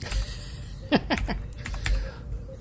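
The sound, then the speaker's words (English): Rapid, loud clacking of keys on a new Razer BlackWidow Chroma computer keyboard, a quick burst of several sharp keystrokes, with no one speaking. “That is a loud keyboard. You're just banging away on it.”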